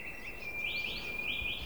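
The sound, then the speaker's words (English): Faint birdsong from a wood in the Glencree Valley, fading as darkness falls after sunset on the summer solstice: a thin, sustained high whistle with a few rising, sliding notes drifting over it, heard alone against a quiet outdoor background. “The sound of the birdsong can still be heard, but it's gently diminishing as darkness falls.”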